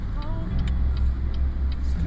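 Steady, loud low rumble of road noise from inside a moving car, with a faint, evenly spaced ticking repeating every third of a second or so.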